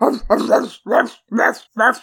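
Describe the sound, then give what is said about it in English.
A person imitates the ferocious 2-foot-long dog of a character named Elizabeth Roney, letting out four loud, harsh barks in a steady rhythm with brief pauses between each bark. “ferocious 2-foot-long dog.”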